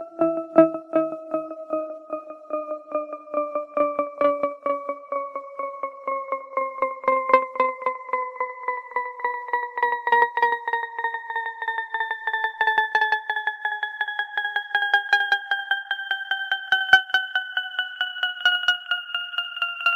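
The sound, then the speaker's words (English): A cascade of chiming bell tones, an audio illusion called falling bells, that seem to fall endlessly, the pitch seeming to glide steadily downward although the tones actually rise in pitch, while rapid, ringing strikes repeat throughout, clear and without voices. “The sound is called falling bells, and it certainly sounds as if the tones are falling, perhaps in their long descent to the bottom of the ocean.”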